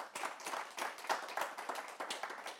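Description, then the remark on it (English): A round of applause from the audience at a EURACTIV event for the panelists, with many overlapping claps forming a steady, sustained patter at moderate volume throughout, no voices heard. “So I want to, first of all, a round of applause for our excellent panelists.”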